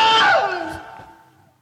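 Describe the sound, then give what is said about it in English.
A man's voice lets out a single loud, pained scream, imitating a man being bitten by an alligator. It starts sharp and strained, then trails off and fades over about a second. “Man getting bit by an alligator and he screams.”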